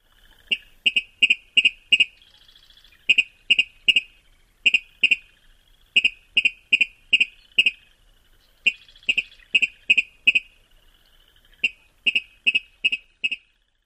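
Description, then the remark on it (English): A male Virginia rail's repeated tinket song in spring: sharp, metallic two-part notes given in quick rhythmic bursts of four to six, with short pauses between series, clear with no other sounds. “During spring, males give a repeated tinket song.”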